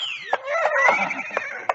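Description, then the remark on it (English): A horse whinnies in a long, wavering, descending cry while a few sharp hoof beats knock at uneven intervals underneath, fairly loud, as horses set off on a brisk morning gallop through a park. “what could be sweeter than a brisk gallop through the park? Well, fine, Arthur. Give every man a horse he can ride, and away we go”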